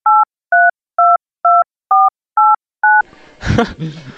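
Seven crisp touch-tone keypad beeps sound in a steady, evenly spaced sequence as a phone number is dialed, followed by a short muffled burst of noise.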